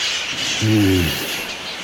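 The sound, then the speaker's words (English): Parrots of Telegraph Hill calling as they fly past Coit Tower in the morning sun, a steady wash of chattering with one brief, louder harsh call rising out of it midway, no voices. “As the parrots of Telegraph Hill fly by, Sister Precious Little spreads her arms as if to join them in flight”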